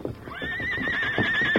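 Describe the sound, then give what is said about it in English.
The horse Silver lets out a long, high, wavering whinny that holds steady for over a second, while heavy hoof strikes thud unevenly beneath it as it kicks at the heavy wooden door of a wagon shed. “At the command of his master, the heels of the great horse Silver lashed out at the heavy door.”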